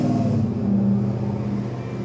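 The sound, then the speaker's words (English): A loud truck engine revs outside in the American South with a deep, throaty rumble that holds steady for a couple of seconds, with no voices over it. “Y'all know I live down south and everybody love these loud ass trucks.”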